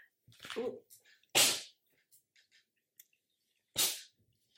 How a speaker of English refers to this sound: Sorry. Oh my god, only two. Usually she sneezes, like she does like eight in a row. And that tiny little bunny sneezes. It's so cute. So annoying.